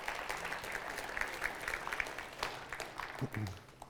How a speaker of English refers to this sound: This is the 9th well the North Bible Church has put in Guatemala. So give yourself a round of applause. That's pretty awesome.